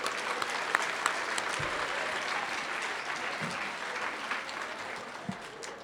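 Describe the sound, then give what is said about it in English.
A crowd at a morning awards session applauds the Cornhuskers: a dense wash of many hands clapping steadily at an even level for several seconds, with a few sharper individual claps standing out. “Okay, let's give one more round of applause for all the Cornhuskers this morning.”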